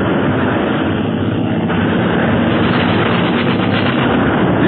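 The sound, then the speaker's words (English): Continuous, dense rattling gunfire with a steady mechanical roar underneath, loud and sustained across the whole stretch, as gunners fire rapid machine gun bursts from a droning plane at police on the ground below. “My gunners have begun the attack.”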